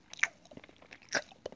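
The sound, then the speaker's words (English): Someone imitates a man chewing a Tesco wrap, making a handful of wet, crunchy smacks in an uneven rhythm, with two louder bites standing out among the softer clicks. “He was there just eating this wrap, this like Tesco wrap, just chewing.”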